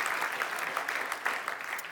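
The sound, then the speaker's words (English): A crowd claps steadily and densely to applaud the Lord, a continuous wash of many hands, with no voices rising above the applause. “Should we just applaud the Lord?”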